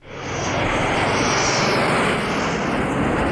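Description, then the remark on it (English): A loud, steady roar of a hijacked jet aircraft coming in to land on the water swells in within the first half second and holds full, a dense engine rush with a slowly shifting high whine and no voices. “let's have a listen to Emilio Largo listening to the jet come and land on the water”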